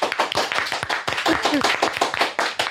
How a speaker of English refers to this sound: Clap your hands if you're judging me